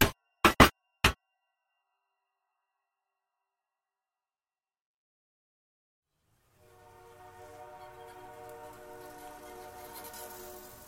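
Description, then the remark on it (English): A distant train whistle at a level crossing, the L-14 crossing signal, sounds one long, sustained blast rising out of silence, preceded by a few sharp, loud clicks at the start and then several seconds of quiet. “Eventually, in the far distance, we hear the L-14 whistle, the signal for a level crossing, long, long, short, long.”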